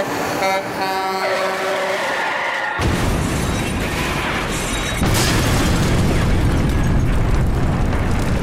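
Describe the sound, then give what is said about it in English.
A truck loaded with dynamite, with a goldfish inside, is pushed down a hill and explodes: a blaring horn-like tone gives way to a sudden, loud roaring blast, followed by a second, heavier burst of rumbling noise that sustains to the end. “Just look what happened when we actually put a goldfish in a truck full of dynamite and pushed it down a hill.”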